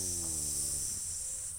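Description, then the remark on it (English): A voice imitates a snake with one steady, drawn-out hiss that holds at an even level throughout, over a faint low hum, with no words spoken. “Snake.”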